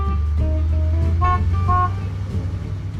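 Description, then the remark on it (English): A box truck engine rumbles steadily while its horn gives a few short, bright toots in the first couple of seconds, then the motor drones on alone; the truck travels from one country store to another in North Georgia. “I learned about the importance of community by riding shotgun in my Uncle Bob's box truck as he traveled from one country store to another in North Georgia.”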